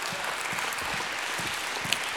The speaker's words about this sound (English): Somebody in the house, give God a hand clap and a shout of praise. Huh?